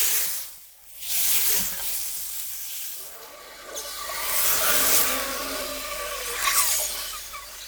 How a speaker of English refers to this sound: I even tried capturing Doppler movement of sounds, for example, frying bacon and moving it across a hot fry pan.